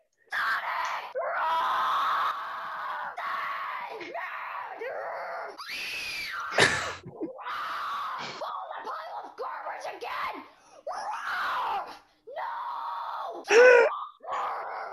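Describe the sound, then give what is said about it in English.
A man screams loudly and almost continuously in a video being played, in long, strained, harsh bursts with brief breaks, with a sharp spike near the middle and another toward the end. “46 seconds of screaming. Well, we should just be careful with how loud it is, because his screams get fucking loud.”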